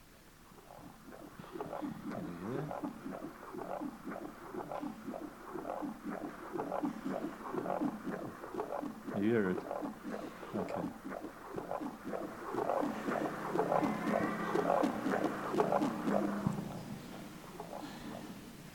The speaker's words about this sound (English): It's the sound of a human heart beating. And as you're laying there and you're just, lady or whoever it is, just pressing around and feeling, finding your heart.